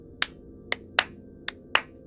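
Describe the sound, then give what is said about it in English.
Five sharp hand claps ring out at an uneven pace, crisp and bright, with a short gap between the second and third and longer pauses elsewhere. No voices accompany them. “Then Peter showed up, my disciple Peter, and he clapped his hands.”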